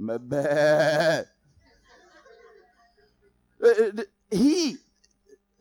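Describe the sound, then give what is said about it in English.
A person mimics a sheep with three loud, quavering bleats: a long wavering one first, then after a pause two shorter, sharper ones close together. No one is talking. “What does a sheep do?”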